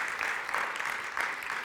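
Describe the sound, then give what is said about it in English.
A crowd claps steadily, a dense, continuous patter of many hands filling the space at moderate volume, with no voices standing out above it. “Come on, let's give him a good round of applause.”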